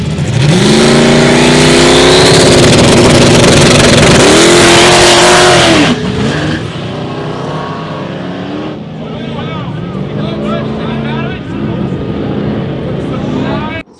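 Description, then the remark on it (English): A race car at Cash Days 2 roars loud for about six seconds, its engine pitch climbing through hard acceleration, then fades to a lower rumble with voices murmuring underneath. “They can hear him get on it and then just coast the rest of the way.”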